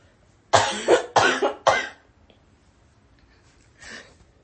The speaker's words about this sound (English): Hold on, I have to cough.